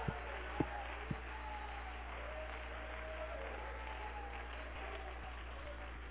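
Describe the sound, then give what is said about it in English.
An audience claps its hands unto the Lord during a sermon, a steady, dense wash of applause that lasts throughout, with a few sharper individual claps at the start and faint voices mixed in. “Come on, if you believe that, clap your hands unto the Lord.”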